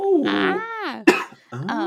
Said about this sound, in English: Don't cough again.